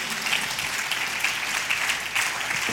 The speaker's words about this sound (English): Would you clap your hands and say amen?